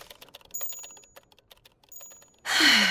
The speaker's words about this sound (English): So I sat myself down at my typewriter and hammered at the keys for all I was worth long into the night.